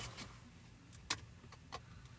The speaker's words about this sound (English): would you like to choose a coin from my dirty car coins? I am choosing a coin.